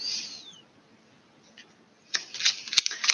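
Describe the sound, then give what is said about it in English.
A deck of tarot cards being shuffled, a burst of crisp, papery riffling and flicking that starts after a quiet stretch and continues to the end, with no one speaking. “Let's keep shuffling.”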